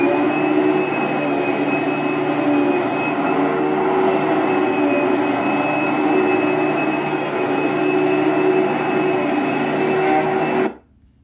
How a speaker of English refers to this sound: And number three is a noise from a vacuum cleaner.